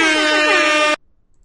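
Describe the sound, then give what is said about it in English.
A single loud, blaring air horn blast holds steady for about a second, then cuts off abruptly into near silence. “Sorry about the air horn.”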